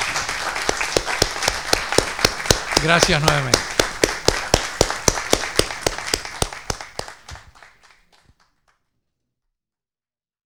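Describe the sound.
Audience applause in a steady, almost rhythmic patter of claps, with a brief spoken voice near the start, gradually thinning out and fading into silence after about eight seconds.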